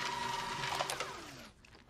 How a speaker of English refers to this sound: Dwight's shredding paper that he's blacked out lines and you stuff.